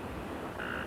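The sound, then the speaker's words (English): A narrow-mouthed toad gives a single nasal, buzzing bleat like the cry of a lamb, lasting a fraction of a second. It rises out of a steady, noisy outdoor background, fairly clear. “Once you hear the voice of this toad, you may think they sound like the cry of a lamb.”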